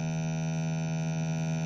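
A steady, buzzy electronic test tone drones on without change: a smooth sine wave with a sawtooth waveform added on the right channel, rich in harmonics, moderately loud and continuous with no voices.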